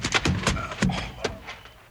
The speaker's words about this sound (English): That bale of hay knocked him colder than a mackerel.